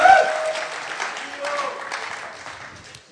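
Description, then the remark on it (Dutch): An audience applauds the band, a dense wash of clapping that starts strong, holds steady and slowly tapers off over about three seconds. “Let's give the band a hand laten we this morning. Een applaus geven.”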